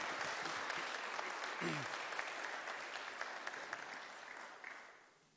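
An audience at a worship gathering applauds its worship leader in a steady, dense wash of clapping that holds for several seconds, a brief vocal sound cutting through early on, before the applause starts to taper off at the end.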